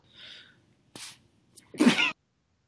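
A short run of harsh, breathy coughs: a faint hiss, then a sharp burst, a small catch, and a final louder, rasping cough that stops abruptly. No one speaks.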